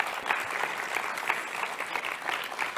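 An audience applauds steadily, a dense patter of many hands clapping at an even level throughout, with no voices standing out.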